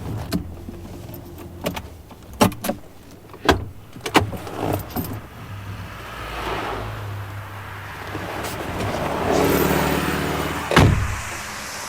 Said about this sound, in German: Endlich verlangsamte der Wagen seine Fahrt und verließ die Autobahn. Er rumpelte an Tanksäulen vorbei und hielt dort, wo es Superkraftstoff gab.